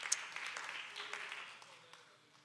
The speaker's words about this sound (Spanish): Denle un fuerte aplauso, hermanos, al Señor. Con todo el corazón, fuerte ese aplauso, hermanos.